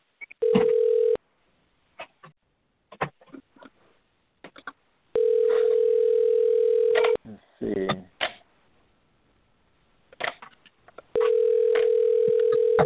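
A phone line rings while trying to call a dropped participant back into the conversation: three long electronic ringback tones, each about two seconds, with pauses in between filled by faint clicks and small rustling sounds.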